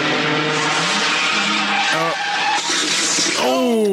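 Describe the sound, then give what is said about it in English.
A truck brakes hard with a loud, sustained tire squeal and skid, the screech wavering in pitch before rising sharply at the end as it comes to a stop. “Oh, the truck stops.”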